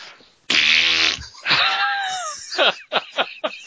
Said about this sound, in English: Or I'll fucking fart on your face another 12 times.